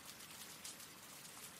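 Steady rain falling, a dense, continuous hiss of drops with faint pattering texture and no pauses, quiet overall with no voices present.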